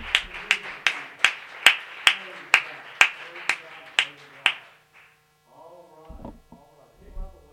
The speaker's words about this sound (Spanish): Un aplauso al Señor.